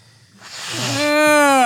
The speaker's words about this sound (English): But now you made me like have to blow my nose. So give me just a second here.